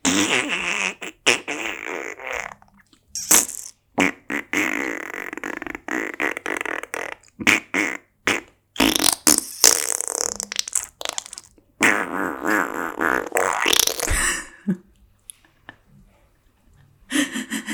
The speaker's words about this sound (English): And I was just like letting out mega farts, heavy mega farts.